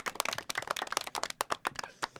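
A canned clapping sound effect played from a button as a clap for Jim Leyland: a quick, uneven patter of many sharp hand claps running for about two seconds, with no voices over it.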